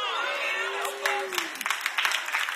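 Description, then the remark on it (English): A voice trails off with a falling, drawn-out tone, then a thin, scattered smattering of handclaps follows at Elevation Church. Only a few hands join in, so the applause sounds sparse and uneven rather than full. “That was the most pitiful clap I've ever heard at Elevation Church, and I've been watching for a long time.”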